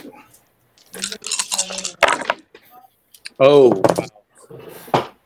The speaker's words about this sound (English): You rolled 4 1s on your panic dice?